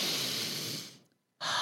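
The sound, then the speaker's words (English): A long, breathy sniff drawn in through the nose, tapering off into a short pause before a second sharp inhale begins. No one speaks. “if you're out on your hike, which I know a lot of you are on right now, happy hiking, sniff that air.”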